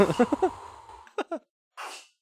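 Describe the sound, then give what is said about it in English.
A sneeze: a few quick, pitched catching breaths build up, then comes a short breathy burst and a final sharp, hissing expulsion. No one speaks. “Bless you.”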